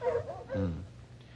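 A cold-trailing bloodhound, one of the pair old Maud and Sneaker, whimpers: a couple of short, wavering whines followed by a lower, mournful moan, all within a moment and with no one speaking.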